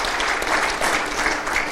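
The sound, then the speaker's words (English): A crowd claps steadily for the worship band, a dense, even wash of many hands with no pauses, bright and loud throughout. “And, man, why don't you guys give the worship band a hand of applause again for just leading us in?”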